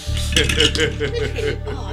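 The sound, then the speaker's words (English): Dice rolled for a melee weapon skill check in a game rattle and tumble across a hard surface in a quick burst of sharp, clicky knocks lasting about a second, then settle. A steady low hum runs underneath. “All right, let's roll those bones.”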